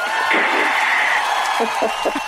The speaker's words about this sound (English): Hello, listeners. They say hello and they look, we've even got a studio audience here that can applaud.